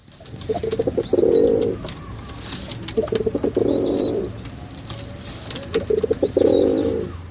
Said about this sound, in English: Take the rock pigeon. These guys court each other with gentle coos, and to signal distress, they use a harsh grunt.